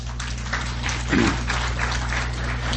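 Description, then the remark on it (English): An audience at a talk on magnifiers claps their hands in answer to whether they see better under direct sunlight or a very bright light, a dense, crackling patter of many claps that continues steadily for a few seconds at moderate loudness over a low steady hum. “How many of you see better when you read underneath the direct sunlight or underneath a very bright light? Clap your hands.”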